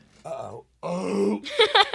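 A loud, drawn-out burp comes in three rough, groaning pushes with a brief pause after the first, low and croaky, sounding almost like retching.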